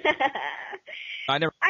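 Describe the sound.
A man talks over a thin, muffled telephone line, his voice narrow and tinny with the low and high end cut away, speaking in short bursts with brief gaps.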